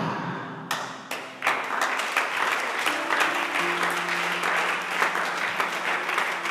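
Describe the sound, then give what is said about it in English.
An audience claps steadily, dense overlapping applause that swells after a few scattered opening claps, with sustained organ-like tones humming underneath. “Those who are clapping, I see divine favor.”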